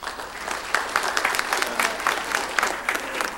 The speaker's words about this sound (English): Let's get a clap for you.